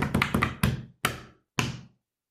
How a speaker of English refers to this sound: I mean, I wish you hadn't slapped that on tape. Oh, I'm going to have to burn this table. That's a terrible effort for a drum roll.